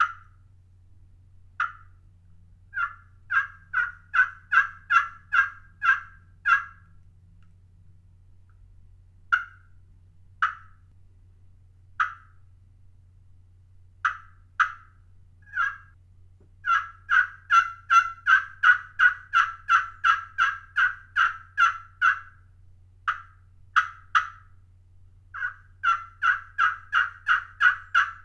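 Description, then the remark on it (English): A slate-over-glass pot turkey call is played in a series of sharp, raspy yelps, some single and spaced, others in fast rhythmic runs of a dozen or more notes, loud over a low steady hum. “So this is a pretty unique looking pot that has a piece of slate over glass in it.”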